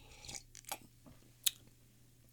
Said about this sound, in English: Let me start off with a sip.